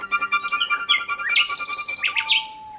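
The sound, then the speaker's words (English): A nightingale sings loudly, a rapid stream of varied whistles, sharp chirps and buzzy trills, ending on a long pure whistled note, with no voices. “You can hear a nightingale almost on a clear night over a mile away, and the power that they put out is extraordinary.”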